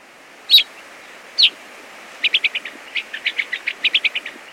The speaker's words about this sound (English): Once again, the calls of gray-crowned rosy finches.